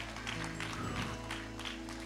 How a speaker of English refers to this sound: Give him a praise clap this morning. Come on, can we give him one clap?